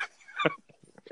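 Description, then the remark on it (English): A dog gives a sharp bark followed by a string of short, high whimpering yips, all within about a second, with a hint of voice in the background. “Sorry, my dog is overly.”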